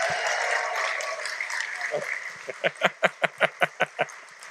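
An audience applauds a four-year-old girl with a scattered wash of clapping and murmur, which then settles into about eight loud, evenly spaced claps in unison, a quick steady beat.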